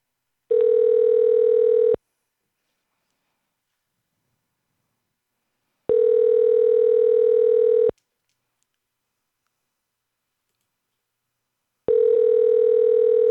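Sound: telephone call ringing tone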